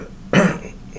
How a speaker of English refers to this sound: what it thinks about that cough? What'd you think about that?